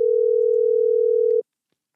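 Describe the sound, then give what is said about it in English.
A steady telephone dial tone of an outgoing call to the caller's own phone hums loud for about a second and a half, then cuts off abruptly, leaving silence. No one speaks. “I'm about to call my own damn phone so y'all can hear how clear it sounds.”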